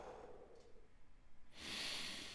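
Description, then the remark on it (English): A single slow, deep breath taken during a breathing practice, fairly quiet: a soft, muffled inhale through the nose, then a louder, airy exhale out through the mouth. No talking. “Breathing through your nose, out through your mouth. Let those lungs fill.”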